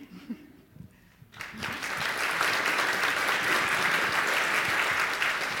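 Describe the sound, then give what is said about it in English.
After a brief quiet stretch, an audience at an 11 o'clock show bursts into loud, sustained applause, a dense wash of many hands clapping that holds steady to the end. “Nobody applauded at the 9:30.”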